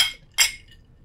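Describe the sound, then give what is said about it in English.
Two bright glass clinks ring out close together as glasses of a Nebraska corn spirit, aged in a charred New American Oak barrel, are touched in a toast, the second sharper and louder, each with a short shimmering decay. No voices are heard. “So I brought one with me today. Very nice. Yeah. Well, nice. Cheers. Cheers. Cheers.”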